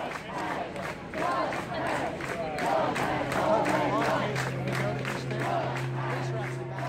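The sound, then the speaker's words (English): A large crowd of pastors at a rally site chants 'love has already won' together in unison while clapping in a steady, rhythmic beat, the voices and claps loud, continuing throughout. “And then there's all these pastors that were chanting and clapping, love has already won.”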